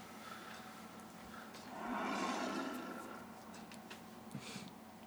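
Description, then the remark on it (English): A creature's deep, rumbling roar deep within the Underdark swells up and fades over a couple of seconds, sounding somewhat muffled against a low ambient background, with no one speaking. “Deep within the Underdark, you hear a roar.”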